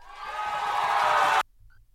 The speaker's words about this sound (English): Yeah, we got the cheering going on. There we go. I don't know if that worked or not, but I found all these little features.